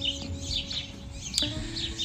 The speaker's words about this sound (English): And I don't know if you could hear all the birds chirping, but there's lots of birds out. I'm sitting in my backyard having my coffee.